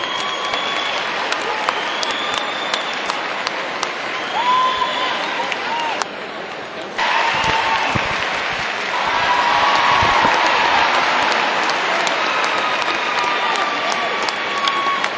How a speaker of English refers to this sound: Toy group in the ring, please. Here they are walking into the ring. You'll hear people yelling and clapping again.